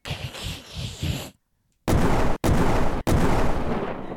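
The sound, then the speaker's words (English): Catapult shots launching cannonballs: a rumbling, noisy stretch, a brief silence, then three loud booming blasts in quick succession, each cut off sharply before the next. “Fire the catapult”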